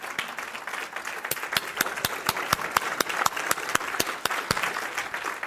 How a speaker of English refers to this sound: When you came to Christ, you were a broke down, messed up sinner. You could clap right there if that's you.